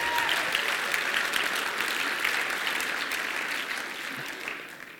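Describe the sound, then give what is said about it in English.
A crowd applauds and cheers steadily, a dense wash of clapping that holds strong for several seconds before gradually tapering off toward the end. “Give it up for the...”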